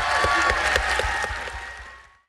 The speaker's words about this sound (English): And if we can just give them all a wonderful round of applause for being amazing people.